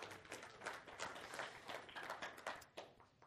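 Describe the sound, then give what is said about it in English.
An audience at a church sermon breaks into applause for Jesus, dense overlapping hand claps forming a steady, crackling wash of sound with no voices over it, holding at an even level throughout. “You can clap for that.”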